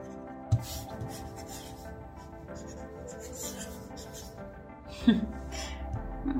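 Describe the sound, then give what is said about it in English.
Soft, continuous scratching of a stylus writing across an e-ink tablet screen with a black paintbrush tool, going over earlier writing, fairly quiet, with a couple of small taps as the pen touches down. “So if I wanted to go over it, you can see the difference there.”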